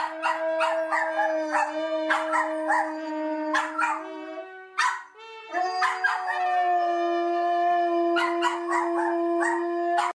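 Several dogs howl in long, wavering tones that overlap, punctuated by sharp barks and yips throughout, loud with no talking.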